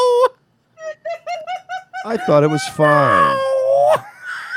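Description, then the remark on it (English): A woman's voice imitates a cat in heat, starting with a quick string of short, chirpy pulses, then breaking into loud, drawn-out yowls that waver in pitch before trailing off. “Okay, so a real cat that's in heat wouldn't sound like that, though. That's the least sexy noise I've ever heard a woman make.”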